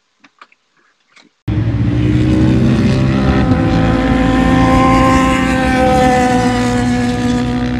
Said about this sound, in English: The other thing is it idles high, and I think it's the automatic idle control that these 10s have. May have just gone bad or just not hooked up right.